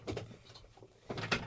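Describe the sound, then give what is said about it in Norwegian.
A chair creaks twice, two brief scraping groans about a second apart, fairly quiet, with no one speaking. “hvis dere hører noe knirking, så det på grunn av Leah sin stol”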